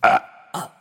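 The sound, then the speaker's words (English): Two short burps in quick succession after someone gulps down an entire bottle of buttermilk, the first louder and fuller, the second a bit softer after a brief pause, with no talking around them. “drank that entire bottle down and let out a very modest burp.”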